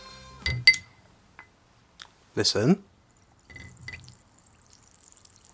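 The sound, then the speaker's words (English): A short burst of a fizzy drink being poured gives way to a faint, steady high fizzing hiss, with a voice speaking briefly beforehand and a few light clinks and taps. “Fizzy. Fizzy. Fizzy. Effervescent.”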